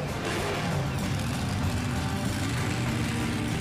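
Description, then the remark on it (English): A powerful monster truck engine roars loudly and steadily, a deep, gritty rumble that holds throughout without pause. No one speaks. The truck is one of six monster trucks that catch air and crush cars at a three-day truck, tractor and ATV pull event. “every day ends with six of the biggest, baddest monster trucks we could find, catching air and crushing cars.”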